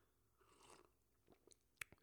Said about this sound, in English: So let me get a sip of this old matcha right now.